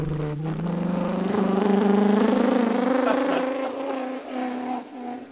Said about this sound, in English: He's redlining his car as he's driving away. He didn't shift out of first. He never learned how to Get out of first gear. He has a manual but doesn't know how to use it.